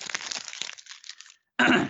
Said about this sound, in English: All right. Let me get my paper out here.